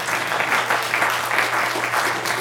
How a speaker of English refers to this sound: Let's give her a very big round of applause. Thank you so much.